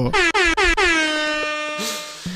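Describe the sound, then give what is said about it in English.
A loud air horn sounds three quick blasts followed by one long, sustained blare, with no voices alongside it. “Horrible use of air horns yet.”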